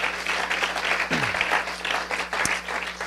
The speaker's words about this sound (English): So let's just give that young lady another hand clap and. Praise God.